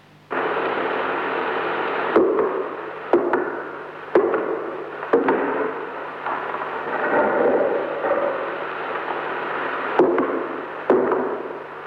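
Heavy footsteps thud on a stone floor in front of an altar rail, sharp dull impacts falling roughly in pairs with long pauses between, over a constant loud hiss of background noise.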